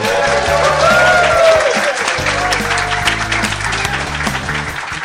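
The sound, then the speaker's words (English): A crowd applauds loudly and steadily for Robert and Kim Kiyosaki, a dense wash of clapping layered over a stepping bass line of upbeat music that continues throughout. “How about a big hand for Robert and Kim Kiyosaki?”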